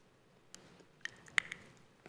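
Quiet chewing of communion bread: a handful of soft, moist clicks and squishes spaced irregularly over a near-silent background, with no talking.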